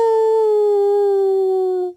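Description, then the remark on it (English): A person's voice imitates an old dog crying by a house: one loud, steady, sustained howl lasting about two seconds, sliding slightly lower in pitch before it abruptly cuts off. “When Jack looked toward the house, he saw a dog crying.”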